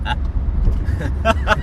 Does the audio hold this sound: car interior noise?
yes